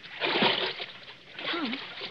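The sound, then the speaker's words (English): Two broad watery splashes, a second apart, from oar strokes as a man rows a boat after pushing off, with a brief voice sound during the second splash. “Push off, man. Start rowing. The other boats are piling up behind you.”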